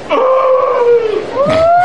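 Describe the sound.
A person's voice imitates whale song: a long, wavering moan that slowly sinks in pitch, breaks off, then swoops upward again in a second drawn-out call, fairly loud with no other sounds.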